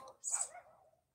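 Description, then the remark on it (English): A single faint bark from a neighbor's dog, a short sharp yelp that trails off quickly, with nothing else around it. “Well, you guys, you know, it sounds like the neighbor dogs are it going at it.”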